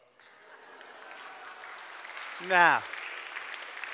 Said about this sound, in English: I'm going to take the water. Okay, here's the water. Good Sheffield tap water. I'm going to pour it into the jug. All the way to the top and see what happens.